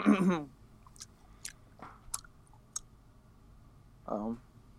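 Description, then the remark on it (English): Loud gum chewing: a handful of wet, smacking clicks at an irregular pace, with a short burst of voice at the start and another near the end. “He can chew gum extremely now.”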